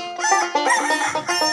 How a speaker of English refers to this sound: I feel like the woke rooster had to come wake us up. I was falling asleep a little bit. Now. I'm awake. Wow. You know, that's why we keep him around, you know?